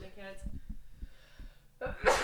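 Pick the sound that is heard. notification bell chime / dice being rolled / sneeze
sneeze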